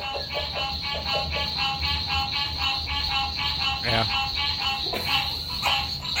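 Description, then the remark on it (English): A loud, dense chorus of frogs croaking at night in a backyard with a pond, rapid pulsing calls repeating over and over without pause, with a single brief voice near the middle. “I don't know if we're going to have as many frogs once the pond goes away, but we have so much frog action. And they're like, loud. Here's a little sound of our backyard.”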